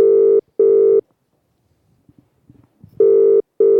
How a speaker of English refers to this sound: She's usually late to answer the phone. I rang her a few days ago. She might be out. She might be out for a walk.